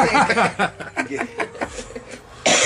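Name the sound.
coughing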